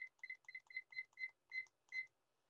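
A quick series of electronic beeps from a timer set for 10 minutes, about nine short tones in a steady rhythm at a bright, high pitch, the last few slightly longer and spaced a little wider.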